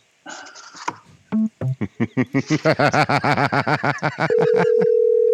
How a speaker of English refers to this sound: Can you hear his phone going off?